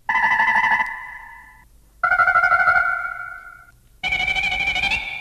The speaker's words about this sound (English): We also have a roar. Now, I don't have a lesson on how the roar was done, but I have the roar ready to go. Let's play it right here.